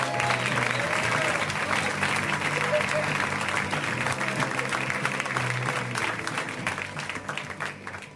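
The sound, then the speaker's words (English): A crowd at the Upright Citizens Brigade Theater applauds steadily in unison for comedian Jay Larson, the claps falling into a shared rhythm, loud and dense throughout before tapering slightly toward the end, with a few voices mixed in. “The unison clap, that was nice.”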